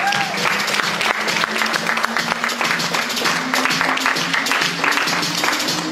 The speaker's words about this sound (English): Come on, people, get to your feet, round of applause.